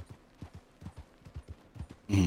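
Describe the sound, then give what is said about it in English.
Steady clip-clop of horse hooves, a quick rhythmic series of soft thuds, cut off near the end by a sudden loud burst of sound. “I just fell off my horse.”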